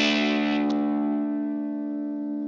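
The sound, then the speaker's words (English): A 1983 electric guitar with its preamp switched off: a chord strummed once and left to ring, its bright attack settling into a steady, slowly fading sustain, played alone with no voices. “The first selection you could choose is to turn off the preamp altogether.”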